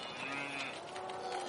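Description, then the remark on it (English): Cows behind a fence moo in a long, droning chorus, several low lowing calls overlapping steadily, with no pauses and no one talking. “And if you look up there, you can just see the cows looking over the fence. They're obviously upset not to be let out.”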